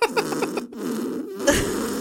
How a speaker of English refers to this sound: So number one, fart squeeze knees.